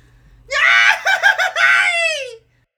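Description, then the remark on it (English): After a three-count, a loud group cathartic scream bursts out and holds for about two seconds, wavering and pulsing in the middle before trailing off into silence. “But yeah, wherever you are, let's do a cathartic scream together.”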